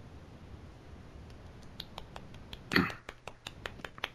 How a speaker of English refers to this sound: That's a golf clap, It's a delightful golf clap. It's a delightful little golf clap.